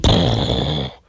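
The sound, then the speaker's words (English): A voice imitates a chainsaw firing up, made with the mouth rather than an actual sound effect: a loud, raspy, buzzing growl held for about a second before it abruptly cuts off into silence. “Those weren't actual sound effects. I made those with my mouth.”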